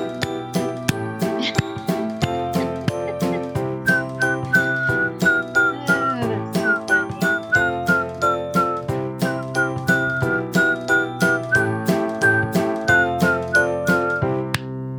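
A bright whistled melody glides over a steady, driving beat of sharp clap-like hits in a lively music track, the whistling carrying clearly through most of the passage.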